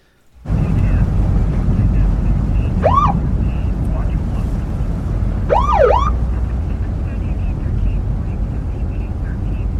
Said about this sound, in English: We see a car driving on a desert road and immediately hear some sirens kick on, so this car is getting pulled over.